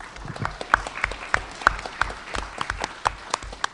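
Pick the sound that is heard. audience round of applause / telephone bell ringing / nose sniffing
audience round of applause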